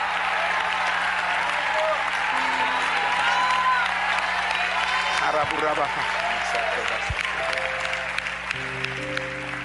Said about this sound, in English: I say you ought to clap. If you can clap with everybody, clap. Clap your hands, who? All ye people.